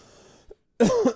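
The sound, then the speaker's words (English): A short throaty sound after a quiet moment, then a loud, harsh cough caused by pollen allergy, with the start of another cough cutting in at the end. “My nose, it's the pollen. I start to wheeze and cough.”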